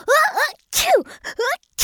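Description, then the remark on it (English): A voice acts out a sneeze: rising, breathy 'ah-ah' sounds building up, then sharp, noisy bursts of the sneeze itself, fairly loud, with a final short burst at the end. “sneezed again, and two even bigger snot bubbles came out from his nose.”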